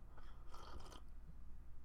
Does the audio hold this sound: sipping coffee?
yes